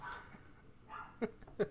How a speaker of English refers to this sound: What's Cisco going to say other than bark, bark, bark, bark, bark? Well, let him say his piece. He says it way better than you do.